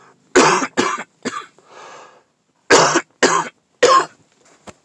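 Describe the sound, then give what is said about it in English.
A loud coughing fit: two clusters of three harsh, hacking coughs separated by a brief raspy breath, ending with a faint throat-clearing rasp. “Man, that's sober cough, too.”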